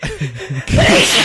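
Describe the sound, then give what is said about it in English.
A single loud human sneeze: a short voiced, wavering build-up followed by a sudden explosive, breathy burst that carries to the end. “I have a sneeze.”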